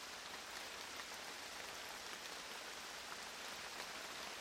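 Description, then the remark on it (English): Heavy July rain pours down steadily in birch woodland in an old quarry at North Hill at 06:15, a dense, even hiss of countless drops striking leaves and ground, with no voices or pauses throughout. “Day one, North Hill, birch woodland rain in an old quarry, July 24th, 2023, 06:15, 100 hours.”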